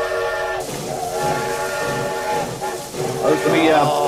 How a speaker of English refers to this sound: What's that? You guys hear that? Sounds like the mail train's pulling into the station.